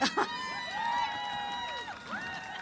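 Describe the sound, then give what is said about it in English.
At a Feds Wish event, participants from federal agencies other than OPM and USDA scream and cheer when asked to: a small audience with sustained, high-pitched whoops that rise and fall over a murmur of other voices, lasting a couple of seconds before tapering off. “If you're from another agency other than OPM and USDA, can you, like, scream, raise your hand?”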